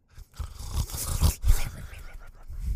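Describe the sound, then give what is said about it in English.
Loud, rumbling snores with a rough, growly rasp, several heavy bursts rising and falling in quick succession from two dads passed out in a living room in a movie scene. No talking. “It's like competition snoring.”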